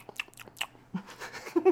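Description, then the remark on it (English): Wet ASMR chewing and biting with crisp crunches, several quick mouth clicks followed by louder, sustained munching right against the microphone. “She does not like when I chew up in her ear.”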